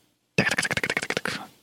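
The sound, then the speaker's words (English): A quick burst of typing on a computer keyboard, roughly a dozen crisp keystrokes in fast succession, ending in a short rattling flurry, with no voices. “Keyboard, you know, trying to do two things at the same time.”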